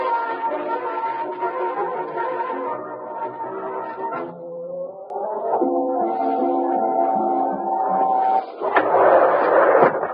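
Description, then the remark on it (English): An elevator hums steadily as it descends to the basement, a loud droning whine that dips in pitch partway through and then settles. It ends with a rough clattering rumble as the car stops. No one speaks. “You bust the elevator while I hide the recording.”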